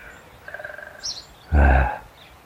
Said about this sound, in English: Well, it's what I call a noisy morning here on the side of my hill. I wonder if you heard the woodpecker a second ago.